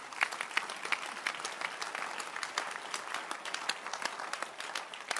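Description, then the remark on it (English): An audience claps together for Jesus in steady, dense applause, many overlapping hand claps forming a bright, crackling wash that holds at an even level throughout without any talking. “Can you clap your hands for him?”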